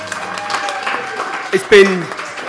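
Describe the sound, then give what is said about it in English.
An audience gives a round of applause for a group at the end of the night. The dense clapping is mixed with cheering and shouted voices and grows louder, with a couple of sharp whoops partway through. “So I think, can we have a, before everyone drifts off into the night, can we have one massive round of applause for these guys?”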